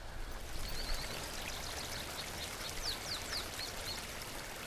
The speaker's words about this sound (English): Frijoles Creek runs through a beautiful forest of old ponderosa pine, Douglas fir, and gamble oak along the canyon bottom here in Bandelier.